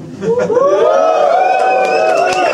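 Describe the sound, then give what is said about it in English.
An audience whoops and cheers loudly for a couple of seconds, a sustained wall of overlapping voices with high rising whoops, a few sharp claps scattered through it. “Can we all just whoop and cheer, irrespective of the warmth in the room?”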